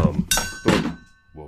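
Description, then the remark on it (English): A phone knocked off a desk hits a hard surface with two dull thunks, one after another, each with a brief bright clatter, followed by a voice starting to speak. “My phone just, I just, like, knocked my phone off my I'll sample my desk.”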